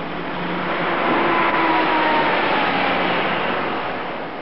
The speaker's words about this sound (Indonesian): Kita naik bis dulu semua dan berangkat ke tujuan terakhir kita pada hari ini.